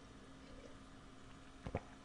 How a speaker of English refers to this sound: He said, punctuating with a sip of tea.